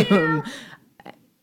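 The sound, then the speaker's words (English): A person mimics a cat with a drawn-out, whiny meow lasting about half a second, followed by a couple of short, soft breathy sounds. “You're going to get eaten by an anaconda if you make that sound.”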